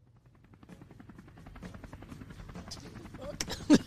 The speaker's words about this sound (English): The way they just put him on the helicopter.